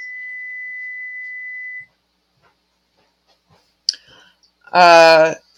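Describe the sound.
An oven timer sounds one long, steady, mid-pitched beep for nearly two seconds, then cuts off. A click and a brief voice-like whine follow after a quiet pause.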